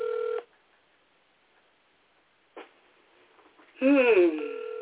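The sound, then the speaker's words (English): A phone call being placed to someone in a different time zone: a steady electronic telephone tone sounds briefly, then a near-silent pause broken by a click. A short voice-like burst follows before the flat phone tone returns at the end, loud. “But in the meantime, let me call my other booty. If he answers the phone, because it's a different time zone where he's at.”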